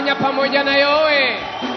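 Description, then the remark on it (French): A crowd of worshippers shouts and cheers together in praise of the Lord, a loud, sustained burst of clamor with raised tones swelling and overlapping throughout. “Faisons-le avec des clameurs.”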